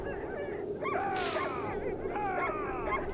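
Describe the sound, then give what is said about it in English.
A pack of sled dogs, driven hard and pulling a sled laden with provisions, yelps and barks in quick overlapping bursts, several high, strained cries close together over a steady background rumble, with no one speaking. “His sled is laden with provisions and he's driving his dogs hard.”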